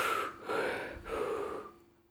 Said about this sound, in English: You just breathe in a faster pace. You just keep breathing like this.